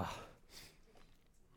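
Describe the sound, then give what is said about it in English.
A short, breathy sniff, preceded by a brief rush of air, then quiet room tone with no talking. “Sorry, I'm going to be sniffing a lot.”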